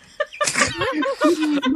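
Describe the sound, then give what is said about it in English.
A loud sneeze: a short intake, then a sharp burst of breath trailing into a drawn-out voiced tail, with no other sounds around it. “They're the sneezes.”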